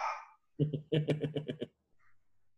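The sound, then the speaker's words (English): A pet dog barks excitedly in a quick burst of yappy barks, seven or eight in rapid succession and loud, followed by a short lull with faint background noise. “Oh, it was another dog.”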